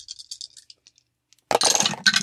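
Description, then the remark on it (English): A string of light, high-pitched clicks and taps, then a sudden loud burst of rattling clatter as dice tumble across a hard surface during a tabletop game. One player rolls four dice and another rolls two. No one speaks. “How many die each rolling?”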